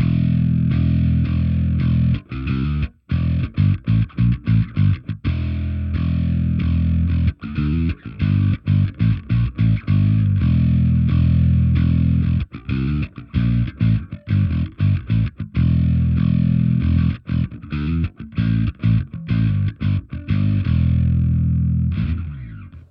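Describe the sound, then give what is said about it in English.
An Ibanez electric bass played with a pick through distortion from a line selector holding a Bass Soul Food pedal plays a driving riff with quick repeated notes and brief stops, loud, continuous for the whole stretch with no voices. “I like to have distortion on with this bass, so I'm going to put on the line selector, which has got the bass soul food in there.”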